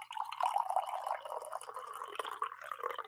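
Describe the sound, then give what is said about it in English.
Coffee being poured into a cup, a steady, trickling splash of liquid that runs unbroken for about three seconds, fairly soft, with no talking. “Should I pour some coffee?”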